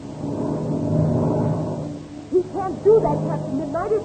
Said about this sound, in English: Captain Midnight and Patsy, standing together below, are horrified. Listen as Patsy screams.